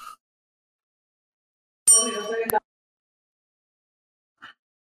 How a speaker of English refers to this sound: He's working at the dry cleaner, so he just rang the bell.